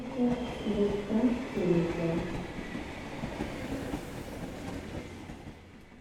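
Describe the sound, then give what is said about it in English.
A train rolls along the rails with a steady rumble that slowly fades toward the end, while muffled voices murmur faintly during the first couple of seconds. “On the train, he quarreled with the conductor.”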